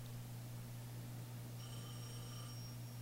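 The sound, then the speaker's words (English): A telephone rings once, a short electronic trill rising out of a steady low hum and background hiss, fairly faint and with no one talking. “Why is the phone ringing?”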